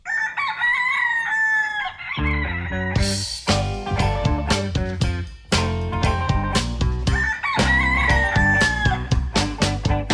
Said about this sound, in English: It's 4 in the morning and the rooster is starting to crow.